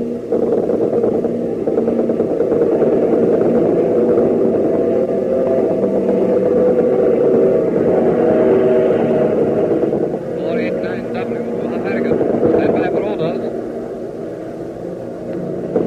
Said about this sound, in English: Oh, boy, I can now. The Spitfire's just got here.